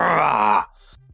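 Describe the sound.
A person voices a low, rough growl for a character in a tabletop role-playing game, lasting about half a second, loud and harmonic-rich with a gritty edge, then it cuts off into quiet with a faint breathy trailing sound.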